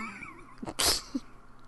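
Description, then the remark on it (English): A single soft, stifled sneeze: a brief intake of breath, then a short breathy burst, fairly quiet, with no talking around it. “That was a really quiet sneeze.”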